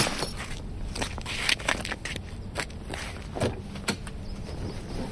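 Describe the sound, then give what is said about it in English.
A bag, grabbed from the back of a truck, is thrown onto the ground and lands with a few rustling, scraping thumps, amid crackling handling noise and a shuffle or two; no one speaks. “I threw it on the ground and got back into the truck.”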